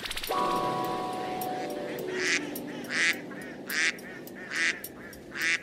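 Geese and ducks honk and quack in a noisy chorus, with repeated loud honks rising over a continuous, busy babble of calls.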